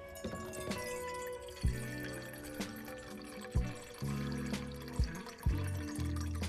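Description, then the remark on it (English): Fresh tap water runs steadily into a small pot for making iced coffee, a continuous splashing stream with occasional clunks and gurgles as the vessel fills, fairly loud, with no talking. “So first we're going to get some fresh water into a small pot.”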